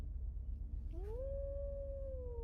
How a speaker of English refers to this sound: The howl sounds again. And in the woods here, you can tell that you are very, very close indeed.